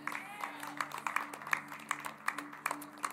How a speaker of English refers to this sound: Maybe that's the clapping of those that'll be left. I don't know.